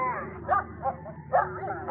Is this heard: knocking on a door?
no